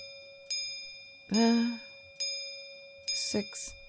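A clock set to 8 p.m. chimes with ringing metallic strikes over a lingering tone, then a quick mechanical clatter and rattle as it springs open, fairly loud.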